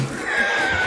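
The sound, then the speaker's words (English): A person imitates a donkey's bray: one loud, nasal, sustained, high-pitched cry lasting about a second, with no talking around it. “I'm gonna be a donkey on you.”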